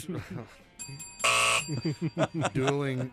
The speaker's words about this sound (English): dueling buzzers and bells here.